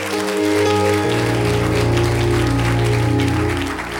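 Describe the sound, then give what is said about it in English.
A church audience claps for Jesus during a sermon in a dense, steady wash of applause, held at an even level throughout, over sustained low organ-like chords with no voices. “Clap for Jesus.”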